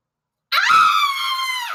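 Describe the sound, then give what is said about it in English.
A single loud, high-pitched, awful scream rings out suddenly from down a hospital hall, holding steady for over a second before trailing off, with no talking around it. “Well, I'm just wandering around the complex when I hear this awful scream from down the hall.”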